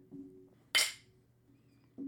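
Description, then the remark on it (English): A single bright clink of glasses touching together in a toast over High West Prairie Bourbon served neat, sharp with a short ringing decay, set against quiet room tone and a faint low murmur. “I have the High West Prairie Bourbon. That's yummy. And I just having it neat. Awesome. Neat. Neat. It's neat. So, cheers. Cheers.”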